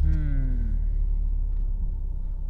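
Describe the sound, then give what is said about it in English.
The engine of a powerful remapped car, essentially an Audi S3 underneath, roars loudly as it accelerates, its pitch sliding down over the first second before settling into a deep, steady rumble. “So but RS3 this particular car has been remapped, so this is probably going to be on a similar level to an RS3.”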